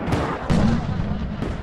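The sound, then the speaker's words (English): Loud gunfire and explosions during Tet, the Lunar New Year of 1968, as North Vietnamese troops invaded cities in the south of Vietnam: a few sharp, booming blasts at irregular intervals over a continuous heavy, rumbling roar, intense, like a battle in progress. “Tet, the Lunar New Year, had arrived, but the sound of firecrackers celebrating the Year of the Monkey in 1968 was replaced by gunfire and explosions.”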